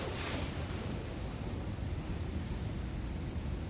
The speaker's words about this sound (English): Eight, the ocean.